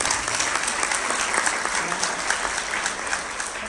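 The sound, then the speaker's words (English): Many people clapping steadily for educators, a dense, sustained wash of applause with no pauses, fairly loud, with no one speaking over it. “So I just want to give you guys a round of applause.”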